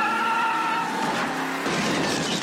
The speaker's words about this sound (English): Whoa, look at that car burn! Does it get any better than this?